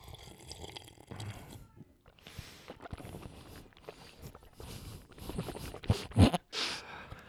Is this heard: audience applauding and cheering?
no